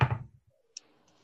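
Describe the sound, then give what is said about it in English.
Metal dice clatter onto a table: a loud tumbling knock, a pause, then a sharp metallic click followed by faint, settling rattles. No one speaks. “I'm using my metal dice.”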